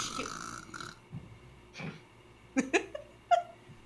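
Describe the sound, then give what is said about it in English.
A brief, sharp sneeze bursts out among a few other short, breathy and throaty noises, moderately loud against a quiet background. “Bless you.”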